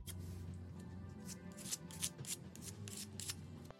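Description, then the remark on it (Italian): A putty knife spreads a third coat of filler across a wall in a series of rasping scrapes, the strokes coming in quick, uneven succession with no voices. “Per far sì che il lavoro esca perfetto, diamo un'ulteriore terza passata.”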